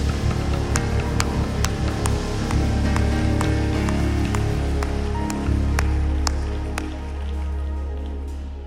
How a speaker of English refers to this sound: Clap your hands in the fear of the Lord.